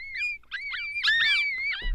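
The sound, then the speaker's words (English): A jackal gives a run of high, wavering yips and wails that rise and fall in pitch, overlapping calls sustained for about two seconds with no talking. “Well, it's not a bird. It's a jackal.”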